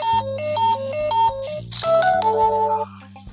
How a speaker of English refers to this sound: Yeah, my apologies. That's actually, my phones are going off there.